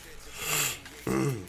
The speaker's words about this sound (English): Allergy issue. That's why I keep sniffling in the mic. I'm sorry, y'all. People with allergies. Allergies been acting up. Allergies been the fool the last couple days.